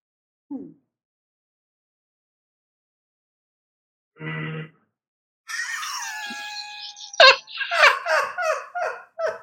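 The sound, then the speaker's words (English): A brief cough from another person, then a man lets out an involuntary loud, high-pitched horse whinny in reaction, a quavering cry that breaks into rapid, descending laugh-like pulses. “We think it's he reacts to somebody else's cough by doing a horse whinny, an involuntary horse whinny.”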